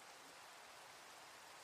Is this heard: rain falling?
yes